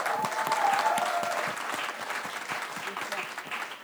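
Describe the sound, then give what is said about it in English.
An audience applauds steadily, a dense patter of many hands clapping at a fairly loud, even level throughout, with a faint whistle-like tone briefly above the clapping near the start. “Can we clap it up for them?”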